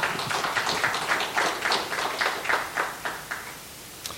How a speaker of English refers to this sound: You might want to give them a round of applause for that as well.